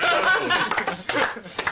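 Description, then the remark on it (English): The hosts clap several sharp hand claps in an uneven rhythm, mixed with soft snickering laughter and murmured voices throughout the short burst. “In case you missed it, we're clapping.”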